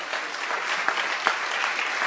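A church audience claps steadily, a dense continuous patter of many hands with a couple of sharper individual claps standing out, holding at an even, fairly loud level throughout.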